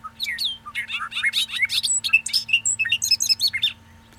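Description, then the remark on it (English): A rapid, busy outpouring of bright whistles, chirps and buzzy notes from a grassland blackbird, packed densely into a few seconds and heard clearly, with no voices present. “And this, of course, has a special place in my heart because I love blackbirds. This is in the blackbird family. So let's go ahead and play your little song, friend.”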